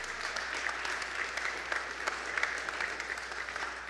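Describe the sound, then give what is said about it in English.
A standing audience claps steadily and densely for several seconds as a clap offering to the Lord, the overlapping claps forming a continuous sustained wash of applause with no voices standing out. “Let's stand and give the Lord a clap offering today.”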